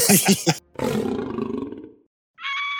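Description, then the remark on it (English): A loud big-cat roar, a saber-toothed tiger sound effect, rumbling for over a second after a few short growling bursts, then fading out before a brief higher-pitched tone. “So if you are out hunting, you probably shouldn't be daydreaming. Because what if a saber-toothed tiger comes along?”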